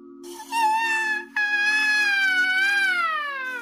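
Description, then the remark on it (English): A voice imitates a wailing scream like an ambulance siren: a loud, sustained, high-pitched tone that breaks briefly, resumes with a wavering pitch, then slides downward at the end, over a low steady hum. “… and a friend, a boy, were near Lake Common, Sandown, when they heard a loud, wailing noise that sounded like the scream of an ambulance siren.”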